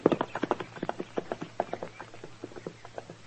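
A horse's hooves clip-clop at a steady walking pace, a long run of crisp, evenly spaced knocks that fade slightly toward the end, with no voices.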